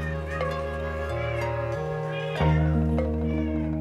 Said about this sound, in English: You know, you wade into a sea of cats. There were well over 25 cats in the house.